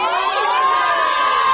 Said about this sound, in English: And the raspberries coming from the Knox crowd as well.